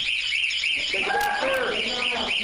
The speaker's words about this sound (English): Was there an alarm going off at that time? Yeah, that's a long story.